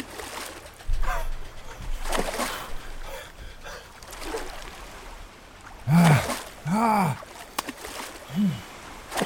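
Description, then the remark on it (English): A heavy splash as a person loses balance and falls overboard from a speeding yacht into the warm Caribbean Sea, followed by churning, sloshing water and then several short, strained gasps or cries from a struggling voice, all fairly loud. “Any cry from my throat was pinched off short as the blood-warm waters of the Caribbean Sea dozed over my head.”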